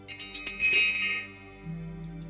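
A small bell is struck three times in quick succession, its bright, high-pitched tone ringing out and slowly fading over a soft low hum, with no talking.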